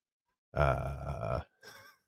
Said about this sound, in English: No, you'll have to excuse the sounds. My wife happens to be playing with the dogs and she's throwing a squeaky toy that's a big green pig. And it's one of the most horrific things you've ever heard. I have no clue why I ever bought it.